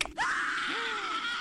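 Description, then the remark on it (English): A whimsical doorbell rings with sustained, warbling tones that slide upward and waver, loud, filling the moment with no voices. “Cute doorbell.”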